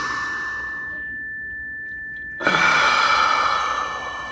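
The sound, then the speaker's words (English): A single clear meditation chime rings steadily, sustaining throughout while a slow breath is drawn in through the nose, then a loud, audible sigh of an exhale through the mouth washes over it. “And I'm going to give you a little chime.”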